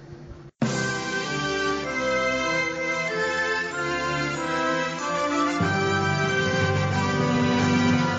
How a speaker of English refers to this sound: I'm now going to play the opening sections of O Canada, the Canadian National Anthem, followed by an explosion, followed by me saying hi and welcome to Alpha Podflight.